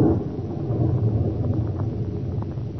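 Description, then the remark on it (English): A deep, rolling rumble of thunder from a lightning strike close by, holding steady and heavy for a few seconds without a sharp crack, with no voices present. “Good heavens, that lightning must have hit quite near here.”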